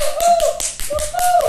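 Quick, steady claps ring out close by as a short burst of applause, with a high whistling or whooping tone running beneath them.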